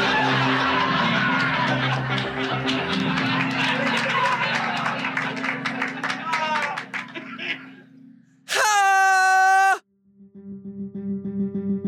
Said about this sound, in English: Dude, some people are screaming outside right now. Really? Yeah. Weird. Screaming like a fight or screaming like murdered? I think they're having fun. Sound like kids.